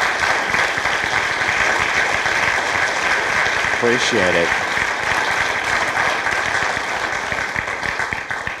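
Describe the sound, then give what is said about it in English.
A crowd applauds team members who stand up to be thanked, a dense, even wash of clapping that stays loud for the whole stretch. A man briefly speaks partway through, barely rising above the noise. “All right, give these guys a big round of applause.”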